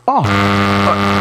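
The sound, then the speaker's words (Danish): A test tone: a short downward-gliding tone drops into a loud, steady electronic hum with rich, buzzy harmonics, holding flat and unchanging for about a second with no voices. “Hvis du kunne se, at de propper et test wave mix ned i halsen på dig.”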